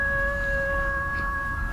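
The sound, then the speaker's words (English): Eerie werewolf-like howling in the distance: a long, steady, held mid-pitched wail with a fainter higher overtone, sustained over a low rumbling background with no talking. “Don't worry about the werewolves in the distance, dude.”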